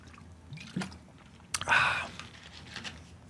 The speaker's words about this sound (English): I'm having a sip of water.